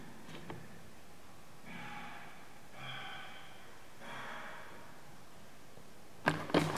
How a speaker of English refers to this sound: Crap, that's somebody coughing. Do you need help? Definitely heard coughing, that's the first really great sound like that I've ever had.